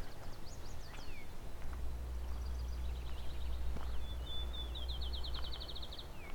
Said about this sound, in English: As in, it's not loud for a field sparrow, this one.